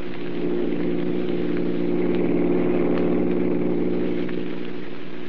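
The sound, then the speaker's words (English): A steady, droning car engine runs continuously at a constant level as the car drives in the city behind another car, a low humming motor sound with no voices over it. “Pass that car in front.”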